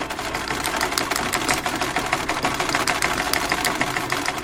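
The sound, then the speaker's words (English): A heavy Singer sole-stitching machine in a small, narrow, cluttered shop runs steadily, its rapid mechanical clatter of needle strokes and knocks repeating in a fast, even rhythm over a continuous motor hum, with no one speaking. “That's a singer's machine, singer's soul machine.”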